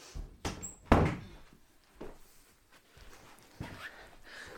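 A door is opened and closed to let a dog out: a few sharp thuds and clunks, the loudest bang early on, followed by softer knocks and rattles with quiet pauses between.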